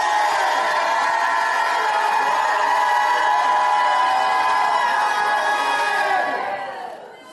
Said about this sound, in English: My God, I'm going to stop till somebody jumps up and shouts like you never shouted in your life.